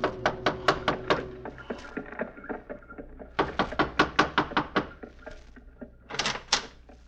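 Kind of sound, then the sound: household object, knocking on a door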